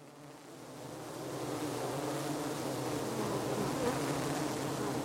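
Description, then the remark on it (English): A dense, steady hum of many bees buzzing around a row of beehive boxes painted orange, blue and white, behind a fence on Lim Morrison Drive in Auburn, kept by a university bee lab. The hum swells slightly in the first second, then holds constant as a thick drone with no voices. “Behind a fence on Lim Morrison Drive sits a row of buzzing boxes, all painted orange, blue, and white in various patterns.”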